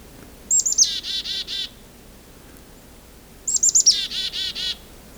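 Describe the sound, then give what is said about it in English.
A chickadee, in the distance on Isthmus Bay Road near Swan Lake Lane and the 40 Hills Road, gives two chick-a-dee calls about three seconds apart, each with quick high notes followed by a run of buzzy dee notes, heard alone over a quiet outdoor background. “I'm starting to hear a chickadee in the distance.”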